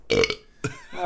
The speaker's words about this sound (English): just belch.